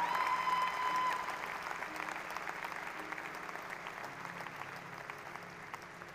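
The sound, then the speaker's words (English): An audience claps for the Lord as a clap offering of victory, a dense, sustained burst of applause, loudest at the start and then holding steady at a slightly lower level, with no one speaking over it. “If you know that the enemy cannot use anything to hinder the manifestation of your destiny, I want you to give the Lord the best clap of victory in the house.”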